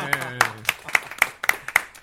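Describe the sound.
Steady, evenly spaced hand claps, about eight sharp beats in two seconds, a small round of applause for a magician; a voice briefly sounds at the very start.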